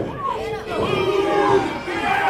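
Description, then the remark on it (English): A loud crowd at a fight roars and shouts continuously as the fighters trade blows strike for strike, many voices yelling and cheering at once in a sustained, excited din with rising and falling swells. “The crowd really get into this.”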